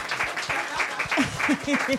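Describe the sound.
An audience breaks into brisk applause, a dense crackle of many hands clapping at once, with a few voices calling out and whooping over it toward the end.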